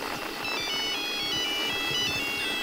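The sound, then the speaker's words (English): A recorded repeating fast radio burst signal: a steady wash of loud hiss with thin, high warbling tones running through it and faint, irregular low pulses beneath. No one speaks. “Now, you're going to hear some hissing, and that's just background noise. And then the repeating FRB.”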